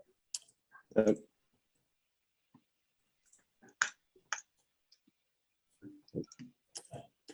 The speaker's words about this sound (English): Keyboard's going nuts.